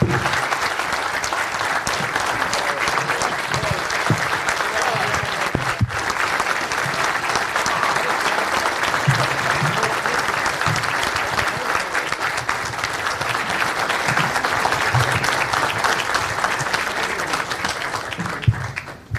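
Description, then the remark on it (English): A crowd applauds steadily for a woman who is present, a dense, even wash of clapping that holds at a consistent loud level for nearly twenty seconds before dropping off at the very end. “Big round of applause for”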